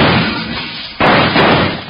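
Two thundering gunshots fired through a window, about a second apart, each a loud, harsh blast that rumbles on without fading away before the next one hits. No voices are heard.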